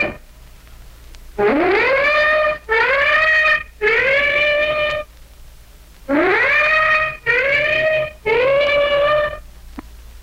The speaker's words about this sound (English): Our own ship has just gave its warning whistles, and now the flak is coming up in the sky in streamers from the warships behind us.